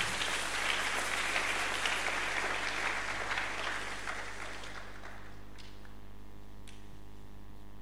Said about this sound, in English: If you want to clap, I believe you can do better.